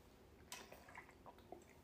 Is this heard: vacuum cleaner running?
no